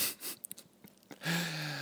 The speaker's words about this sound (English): Okay, you need to finish chewing there. I'll let you do that.